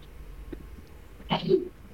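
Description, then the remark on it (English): A single sneeze bursts out after a quiet stretch: a sharp breathy onset sliding into a short voiced "choo", moderately loud over faint background noise. “Guys, I think someone sneezed in the siblings.”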